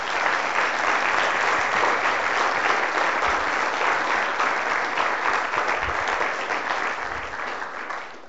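An audience applauds church leaders steadily for several seconds, a dense, even wash of clapping that holds strong before tapering slightly toward the end.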